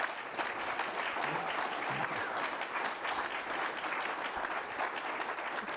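A room full of people claps steadily for several seconds, a dense, even patter of many hands with no voices rising above it, as an audience applauds a speaker after the Q&A of a public conversation event.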